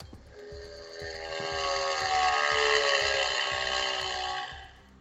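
A motorbike engine drones with a buzzy, harmonic tone over low rhythmic thudding, its pitch climbing slightly and swelling louder mid-way before easing back down. No voices.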